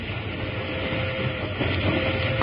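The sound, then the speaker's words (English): A steam train engine pulling a single car runs steadily and fast along the tracks, a dense, continuous rumble and rush of noise that holds an even loudness throughout, with no voices. “Bill, ain't this old peat kettle busting along a little too fast?”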